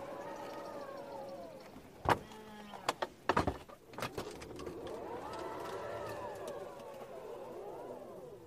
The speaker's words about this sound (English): you can similarly open the rear doors as well. These open vertically and passengers can easily access the seating, which is available in a few setups.